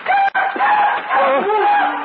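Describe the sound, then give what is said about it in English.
A night bird calls loudly, a drawn-out warbling cry with wavering pitch that carries on for about two seconds after a brief catch near the start. “It's just another night bird, Everts.”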